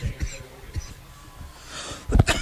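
A man coughs hard, a couple of loud, close bursts near the end, preceded by quieter breathy, snuffling sounds.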